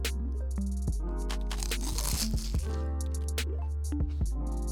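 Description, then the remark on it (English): Crunchy bites into a frozen egg roll, a run of crisp, crackling crunches and wet chewing noises that repeat irregularly over a few seconds, moderately loud, with no talking. “You deserve the crunch.”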